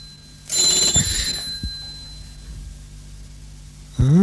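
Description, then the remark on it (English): A telephone bell rings once in a short, jangling burst, loud, then fades to a low background hum before a brief rising tone cuts in at the end. “This confounded phone's tinging, I wonder who it is.”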